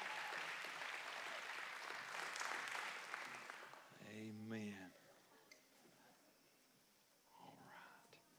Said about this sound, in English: Look at these awesome kids over here. Let's give our kids a great big round of applause. They're coming right there.